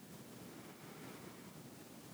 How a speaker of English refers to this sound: the sound gets louder. You now are approaching a water source, a gorgeous, spring-fed pool of water surrounded by rocks and trees. Water pours in and around the edges.